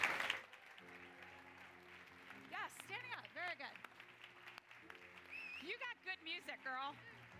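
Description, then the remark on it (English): An audience applauds steadily for several seconds for an honoree from Blue Cross Blue Shield of Tennessee, a dense wash of clapping with high whoops and cheers rising over it and a low sustained tone running underneath. “And so I hope you can all provide a nice loud round of applause”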